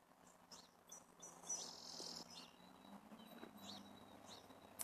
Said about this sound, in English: And there's a couple other birds here. That's a good singing there.